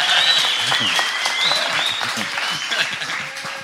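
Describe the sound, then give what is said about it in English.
Loud, sustained audience applause fills the whole stretch, dense steady clapping with high whistles and crowd cheering rising over it. “Of applause, man.”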